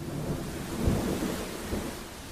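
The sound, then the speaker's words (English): Steady rain hisses through a wet, windy, stormy night in Wellington while low thunder rumbles swell twice, with a gusty wind blowing underneath. No voices are heard. “Then on a wet and windy Wellington night, the operation came to a head.”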